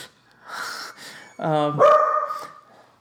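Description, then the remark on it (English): Dogs bark at the mail delivery in a short burst of sharp, harmonic yaps, a couple of overlapping barks, loud against a quiet background. “The dogs have opinions on this, obviously.”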